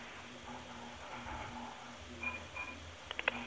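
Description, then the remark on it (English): Pots clank faintly in the background as someone cooks, over a steady hum, with a brief metallic ring and then a quick cluster of three or four sharp knocks at the very end. “Who the fuck was cooking in the background? Banging pots.”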